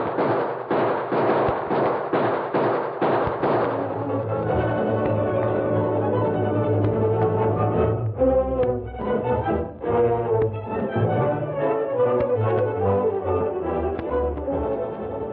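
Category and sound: sound effect, gunfire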